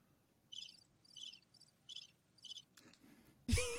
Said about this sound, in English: Were those crickets?